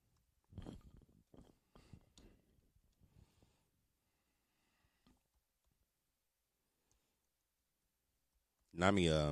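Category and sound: household object, typing on a keyboard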